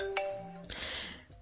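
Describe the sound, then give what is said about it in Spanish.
A telephone rings once with a bright electronic chime, its steady tones lingering briefly before a rush of noisy hiss takes over. No one speaks. “María, por favor, conteste el teléfono.”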